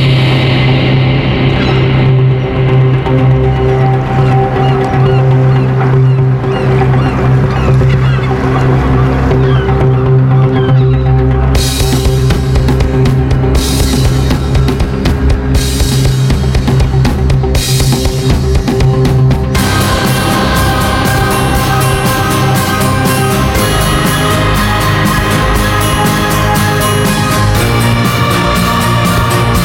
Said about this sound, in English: It was like these quick upstrokes, downstrokes on the guitar, and the drums were going wild. It was really drum focused, very energetic. Yeah, I really like that.